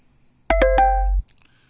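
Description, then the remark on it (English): A short electronic phone notification chime rings out, three quick bright tones with ringing harmonics, fairly loud, then fades into quiet background. “as one of my notifications goes off”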